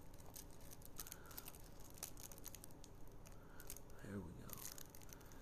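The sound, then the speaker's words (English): Soft crinkling and rustling of thin rolling paper being tucked and pressed while rolling a joint, keeping tension on the paper, a dense run of tiny crackles with a brief murmur of voice partway through. “Like, so once I feel like I got that tip fixed, I'm gonna tuck that fucking paper. I'm gonna keep that tension.”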